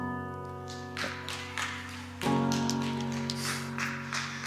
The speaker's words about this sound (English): That's two Sundays in a row we got hand claps, man. It's happening.